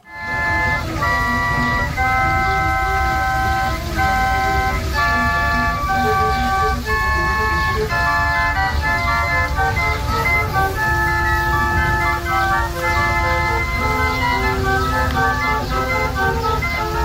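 A water organ, its pipes powered by water, at the Alcazar palace in Spain plays a steady, loud melody of sustained reedy notes and chords that shift every second or so over a low droning rumble, with no voices.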